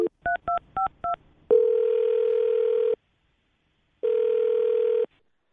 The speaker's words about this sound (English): All right, here we go. I'm going to dial the phone number.